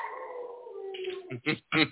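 A dog lets out a drawn-out, slowly falling howl, then breaks into three short, strained whines and yelps, clear with no talking.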